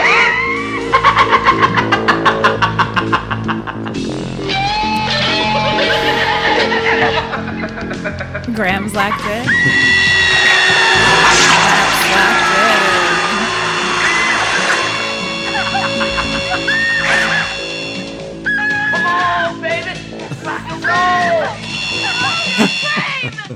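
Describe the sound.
A custom guitar drill weapon from the 1987 slasher sequel Slumber Party Massacre Part 2 whines and buzzes in sustained, high harmonic tones that glide up and down, with loud laughter and voices mixed throughout.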